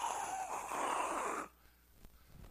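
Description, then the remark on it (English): A voice imitates the wind of a hurricane storm: one loud, breathy whooshing blow with a faint whistling edge. It lasts about a second and a half before cutting off into near silence. “That sound like wind.”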